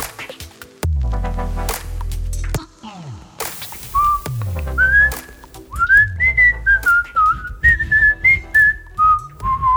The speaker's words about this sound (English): Thanks for whistling. I'm not whistling.